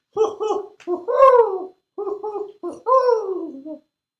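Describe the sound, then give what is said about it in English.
A voice imitates an owl hooting, giving two loud phrases of two short hoots followed by a longer, wavering hoot, with a brief pause between the phrases. “That owl sounded a little weird.”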